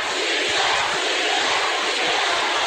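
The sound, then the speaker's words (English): A crowd at a wrestling match, fired up by a wrestler's move, cheers and roars steadily, a loud, dense wash of voices that holds at full volume for the whole stretch, with no single speaker standing out. “He got the crowd fired up on that one.”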